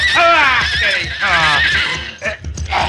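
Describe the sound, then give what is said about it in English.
A horse named Diablo whinnies loudly, a long wavering neigh that rises and falls, followed by snorts and shorter bursts near the end. “Your pardon, senores, but you saw how my horse was acting.”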